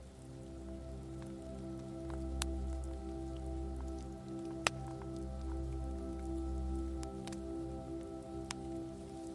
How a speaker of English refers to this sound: Breathe intentionally as you sit with this question, and perhaps notice the sound of the waves rolling up the beach.